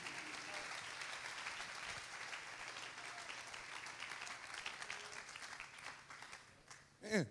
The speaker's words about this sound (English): Somebody clap your hands and say, thank you, Jesus.